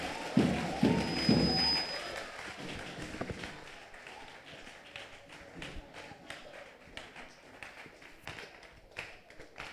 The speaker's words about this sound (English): Give Jesus a big, big, big, big clap of praise.